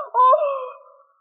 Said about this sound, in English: Well, …, why did you scream?